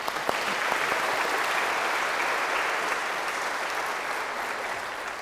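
An audience gives a deacon a quick round of applause, clapping in a steady, dense round lasting several seconds, with a bright crackling texture that holds even and loud before tapering slightly at the end.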